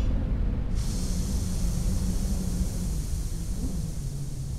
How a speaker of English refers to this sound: What was that? I guess that it was an avalanche.